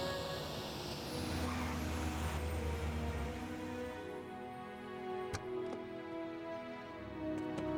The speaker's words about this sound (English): Is that supposed to be a fancy car?